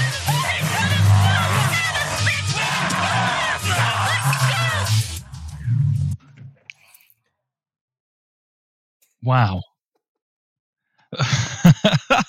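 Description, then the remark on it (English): A scene from the 1988 film Demon Warp: several young voices of teenagers scream frantically as a large, slobbering, Bigfoot-like monster harasses them, over a low, rumbling growl for about five seconds, then a pause, one sharp rising shriek, and a final burst of wet, chaotic noise. “If you're struggling to visualize what's going on there, that is the sound of some teenagers being harassed by a large, slobbering, kind of Bigfoot-esque monster, which is pretty much about three quarters of this film's action.”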